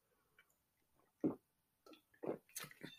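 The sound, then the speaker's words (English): Quiet mouth sounds of someone sipping and swallowing water: a soft gulp, then a quick series of wet slurps and swallows, with no talking. “Sorry, I had to take a drink of water.”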